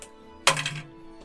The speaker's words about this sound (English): It's 9 on the dice. That's a hit.